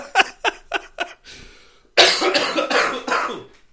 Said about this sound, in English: I can't laugh too much because then I'll start coughing, you motherfuckers.